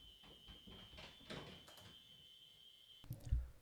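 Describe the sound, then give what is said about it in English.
A fire alarm blares a continuous, piercing high-pitched tone for about three seconds, then cuts off abruptly, followed by a couple of soft thumps. “And through the perfect magic of editing, you're not even going to notice the fact that my fire alarm just went off, woke up my daughter”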